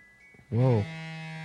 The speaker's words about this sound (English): Anna left her phone on the desk, and it's going crazy and making noises I've never heard it made before.